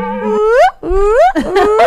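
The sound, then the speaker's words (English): A voice imitates a slide whistle, sounding loud, sliding pitch glides: a steady note sweeping upward, then two more rising swoops, the last one wavering. “Slide whistle.”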